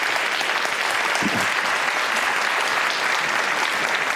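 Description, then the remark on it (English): Loud, sustained applause from an Intelligence Squared debate audience welcoming Bob Rosenkrantz to the stage, a dense steady roar of many hands clapping at an even level with no voices standing out. “So I want to welcome to the stage, and I hope you will as well, with a round of loud applause, Bob Rosenkrantz.”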